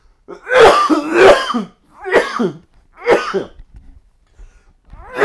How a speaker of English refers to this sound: All right, man, I hope that cough goes away.